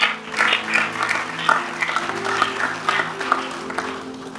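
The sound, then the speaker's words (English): A church audience claps together steadily in praise to God, a dense wash of many hands with a loose rhythmic pulse, while sustained keyboard or organ tones hum underneath throughout. “He said, Jesus, you can clap and give God praise.”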